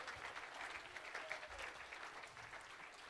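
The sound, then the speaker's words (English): An audience at a church service on a Sunday night claps their hands to Jesus in dense, sustained applause, many overlapping claps continuing steadily for a few seconds with no talking. “Can we clap our hands to Jesus for a few moments here?”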